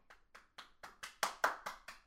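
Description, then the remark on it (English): A quick run of about nine sharp hand claps in a steady, even rhythm, building a little louder midway before easing off slightly, with no voices. “Oh, girl, I'm trying to figure out what this clap was. So, were you clapping at me saying?”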